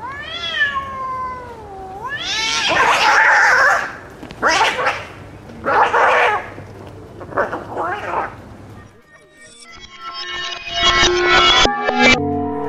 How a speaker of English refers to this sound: And I like the sounds of big cats. It's soothing.